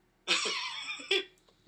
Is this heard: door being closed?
no